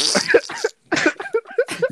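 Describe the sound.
A voice makes a string of raspy, sputtering bursts mimicking a fart, with a brief pause partway through before the noises pick up again.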